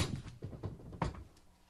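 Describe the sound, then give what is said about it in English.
A fist slams down on a table right after the line "Take that for data", in a few dull, heavy thumps, the last one loudest and sharpest, followed by a short muffled tail. “I love take that for data and then slamming his fist down is an amazing line.”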